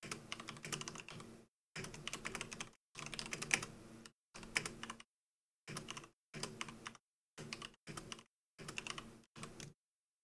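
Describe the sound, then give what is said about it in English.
Rapid clicking of someone typing a text on a computer keyboard, coming in short bursts of clattering keystrokes separated by brief silences, with no voices. “I gotta write these on the fly. Type.”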